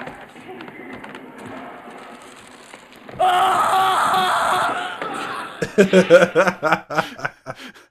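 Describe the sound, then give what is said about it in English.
A person imitates a character's classic scream as he opens a basket and runs out of the bathroom holding his face: a loud, strained, sustained shriek lasting a couple of seconds, followed by bursts of choppy laughter. Quieter talking comes before it. “Classic scream as he runs out of the bathroom holding his face.”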